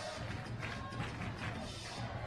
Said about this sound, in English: The fans clap and chant Jesse Harper.